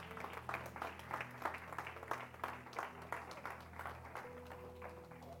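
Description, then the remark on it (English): A crowd claps their hands together in dense, sustained applause, giving God a hand clap after a prayer, with many overlapping claps at moderate volume and a low murmur underneath. “Give God a hand clap if you can.”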